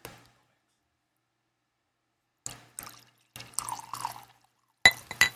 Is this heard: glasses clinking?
yes